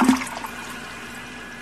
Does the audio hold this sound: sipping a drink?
no